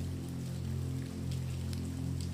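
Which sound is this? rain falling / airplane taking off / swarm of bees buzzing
rain falling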